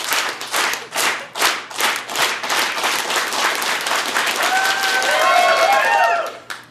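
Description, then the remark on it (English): An audience claps in slow, evenly spaced unison, the beats quickening into full, loud applause, with whistles and whoops rising near the end. “Can we start a slow clap”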